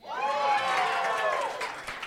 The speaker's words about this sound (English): That's a fun part about this game is they cheer for the movies they like. So if you pick ones that they like, it gets a big reaction.